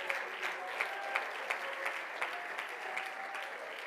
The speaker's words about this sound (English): Oh, clap your hands and praise him tonight.